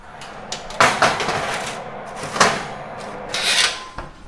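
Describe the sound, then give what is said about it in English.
A faulty oven door, with seasoned sliced pumpkin just put inside, is shut with several rattling metallic clunks and scrapes spread over a few seconds, fairly loud, as if the door sticks before it closes. “Close up my dodgy door.”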